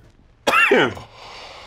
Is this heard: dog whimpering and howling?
no